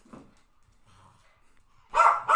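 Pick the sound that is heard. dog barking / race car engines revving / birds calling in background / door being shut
dog barking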